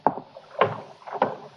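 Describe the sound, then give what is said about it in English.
Three hollow footsteps land at a steady pace on the wooden deck of a boat tied up at a wharf, each with a brief creak and knock, and no voices. “Elena is waving to me from the deck of one of the boats tied up at the wharf. Come aboard.”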